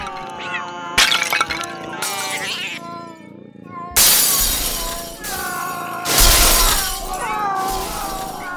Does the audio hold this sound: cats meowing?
yes